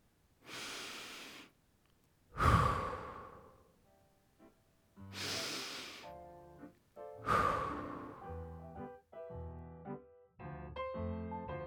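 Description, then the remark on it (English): Slow, deep breathing during a morning meditation, four long airy inhales and exhales spaced a couple of seconds apart, with soft tonal humming sounds joining in the second half. “I breathe to the rhythm of the moss steps.”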